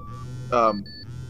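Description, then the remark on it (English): A phone buzzes once, a short, loud, raspy electronic burst, then a brief thin tone, with a steady low hum underneath. “I'm getting a buzz here. Your phone sounds weird.”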